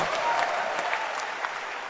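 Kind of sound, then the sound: crowd, audience clapping hands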